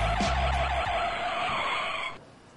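A loud, sustained screech of car tires skidding under hard braking, lasting about two seconds before cutting off abruptly, with a low engine rumble at the start.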